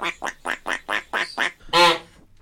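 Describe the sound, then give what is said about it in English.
A pet duck quacks: a quick, steady run of seven raspy quacks, followed by one louder, longer, more drawn-out call. No one speaks. “What you doing, my little duck?”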